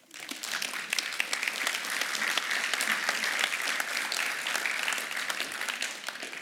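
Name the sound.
audience applauding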